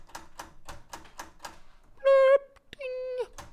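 A computer's typewriter sound effect as an email arrives: a quick, even run of about six crisp key clacks, then two bright, sustained electronic ding tones, clear with no talking.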